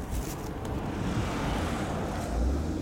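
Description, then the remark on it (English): Steady wind blows throughout, a broad rushing noise with low rumbling gusts buffeting the microphone and swelling slightly toward the end. No one speaks. “Well, that might have been windy.”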